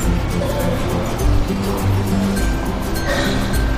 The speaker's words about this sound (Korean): 아, 지금 시끄럽죠? 예, 저 오늘은 녹음을 예, 전철역에서 하고 있습니다.